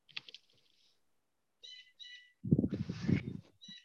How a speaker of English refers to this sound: Bird, no. Can you tell that bird to fuck off? Hey! I'm recording! Well, he doesn't care. He's even more fucking louder now.